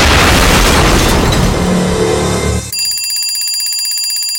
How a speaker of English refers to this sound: From the sound of it, a bomb has exploded, and I suspect that he might have suffered a concussion.